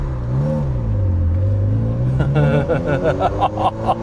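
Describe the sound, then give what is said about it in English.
The engine of a Ferrari Mondial T sports car, built 1989 to 1993, revs up and accelerates as it is driven, its low hum rising steadily in pitch, heard from inside the cabin, with brief voice-like sounds near the end. “I'm in the Mondial. This is a Mondial T, built from 1989 to 1993.”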